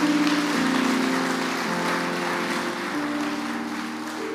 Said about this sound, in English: Give the Lord a clap.